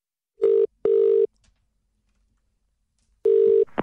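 A phone line ringing as a daughter calls her mother: steady electronic ringback tones in repeated bursts with silent gaps between, loud, with a brief click at the end as the call connects.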